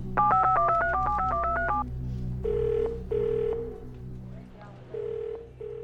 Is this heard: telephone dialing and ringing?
yes